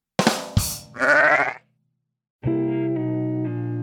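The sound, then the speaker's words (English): A sheep bleats in a short, wavering cry after two quick bursts, fairly loud, then after a brief silence a steady buzzy electronic tone holds for over a second. “Where do sheep go to get a drink? I don't know. The bar.”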